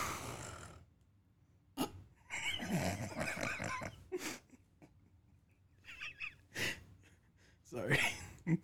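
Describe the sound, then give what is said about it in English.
Exaggerated snoring from a person pretending to take a nap: rough snorts and grunting inhales mixed with breathy gasps and sighs, coming in irregular bursts separated by short quiet pauses, likely a playful vocal imitation. “So we're going to sit here and take a nap, and y'all get to listen to us snore.”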